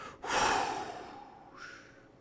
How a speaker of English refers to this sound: The dragon coughed twice miserably, then let out a huge breath of smoke.